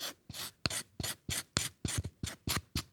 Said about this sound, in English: What I just did was took a knife and peeled away the outer layer of bark. This outer layer of bark doesn't actually have much of the essential oil compounds in it that give it that nice flavor.